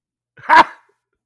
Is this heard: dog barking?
yes